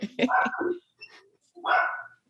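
Dogs bark in a quick cluster of sharp barks, then a fainter yip and one longer, drawn-out bark after a short pause, fairly loud.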